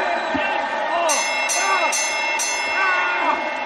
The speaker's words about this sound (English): Ring the damn bell!